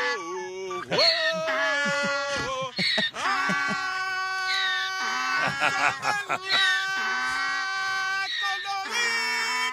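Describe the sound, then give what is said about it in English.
A donkey brays loudly in long, wailing, honking bursts while a man sings a song from The Lion King along with it, the two voices overlapping and rising and falling together throughout. “Don't you wish you actually knew what was making the donkey sing the Lion King song with him?”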